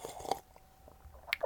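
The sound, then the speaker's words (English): Someone takes a sip of a drink: a brief wet slurp and swallow, a quiet pause, then another moist mouth sound at the end. “Every time I take a sip...”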